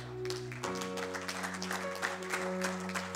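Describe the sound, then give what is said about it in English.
An audience applauds with dense, steady clapping that fills the room, while sustained organ-like chords hold underneath throughout. “It's all right to clap.”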